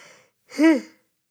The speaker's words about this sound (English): I need to hook this up so I can push the button when I need to yawn.